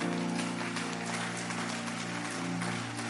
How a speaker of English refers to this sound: Increase that clap offering for me. Increase that clap offering because you will smile. Increase that clap offering because this is a tailor-made message for you. Increase that clap offering because God is in your vicinity.